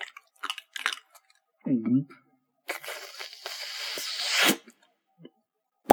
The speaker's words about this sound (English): Why don't you do like I do? Chew the tablet up first and swallow the water on top of it.